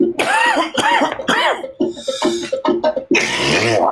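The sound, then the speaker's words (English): A series of loud coughs in quick succession, harsh and throaty with strained, rasping bursts, filling the whole moment with no talking in between. “Nothing wrong with a good cough.”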